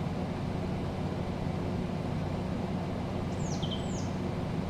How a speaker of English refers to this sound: You hear birds chirping. It's a beautiful sound, but a bit muffled through the glass of your car window. They're all rolled up because it's a hot summer day and your air conditioning is so pleasant.